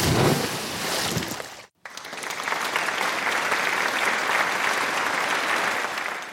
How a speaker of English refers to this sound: Our cheers were joined by canned applause over the PA.